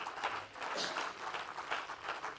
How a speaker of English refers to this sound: Oh, I wish some of you men would stand up and applaud God with me.